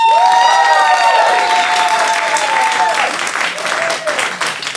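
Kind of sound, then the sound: crowd, audience applause and cheering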